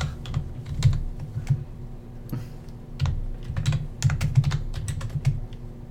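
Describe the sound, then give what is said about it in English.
Rapid, irregular clicking of keys on a computer keyboard while looking up South Park on YouTube, bursts of taps with brief pauses between them, over a low steady hum. No one speaks. “Tell me what you want, and then I will look it up on the computer.”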